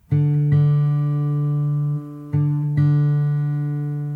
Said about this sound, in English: This time, press on fret 5 of the 5th string, which is a D note. The same sound as an open 4th string. Now, go ahead and match those sounds.